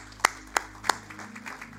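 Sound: audience clapping hands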